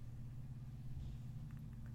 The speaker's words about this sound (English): I think it's the neighbor with the loud car. He's about to start revving it for no reason in his driveway. Why does he do that?